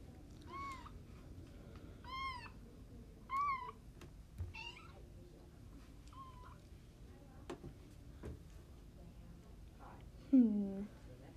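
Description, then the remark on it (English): A cat, Miss Princess Kitty, in Hawaii, meows repeatedly, about half a dozen short, rising-and-falling mews spaced a second or so apart, ending with a lower, drawn-out meow over a faint background hum. “No, I can't understand cats, only kittens, dogs, and ducks.”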